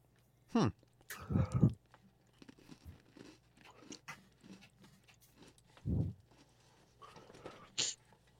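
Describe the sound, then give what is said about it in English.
Crunchy chewing of a snack that smells like an Oreo, with several sharp crunching bursts spread out over a few seconds and quieter mouth sounds in between. “Getting that crunch down.”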